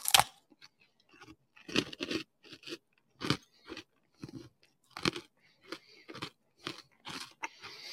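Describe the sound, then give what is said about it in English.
Loud crunching of dry, brittle freeze-dried mint chocolate chip ice cream, in repeated bites and chews spaced about every half second to second, with short pauses between. No talking. “I'm going to give it one more try here, so don't mind the crunching.”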